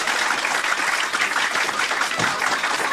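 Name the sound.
crowd clapping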